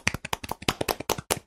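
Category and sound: human body sound, hands clapping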